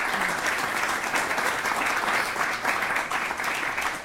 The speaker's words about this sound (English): And for that, I think they do also deserve a round of applause.